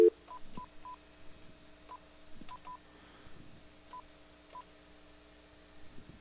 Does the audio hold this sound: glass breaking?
no